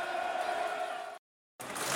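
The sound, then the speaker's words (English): A large football crowd applauds and cheers loudly for a player's run and tackle that clears a loose ball, a dense roar of clapping and voices that cuts out abruptly for a moment before resuming. “Listen to the applause for that.”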